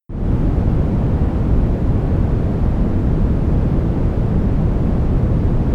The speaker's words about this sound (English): So this was when we were talking about my white noise machine, which I adapted a script that was supposed to sound like the Star Trek bridge noise. And you can hear that now.